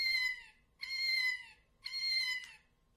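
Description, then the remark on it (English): A cat-shaped novelty bag clip gives three squeaky, electronic-sounding meows in a row, evenly spaced, each about half a second long, fairly loud with no talking. “It's just a bag clip that happens to make noise.”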